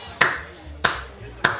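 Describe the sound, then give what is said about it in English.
Three sharp hand claps at a steady, unhurried pace, each crisp, imitating a crowd clapping, with a faint low hum underneath between them. “And you know, the inverse is true when people start clapping in a crowd.”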